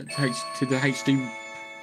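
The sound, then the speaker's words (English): A front-door doorbell rings with three quick chime notes, each tone lingering into a steady hum that fades out afterward; it sounds moderately loud and is heard on its own. “Somebody's at my front door.”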